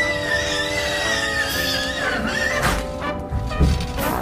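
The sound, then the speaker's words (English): Horses neigh and whinny loudly, high quavering calls rising and falling for several seconds, with a couple of dull thumps near the end. “I'm gonna go feed the horses.”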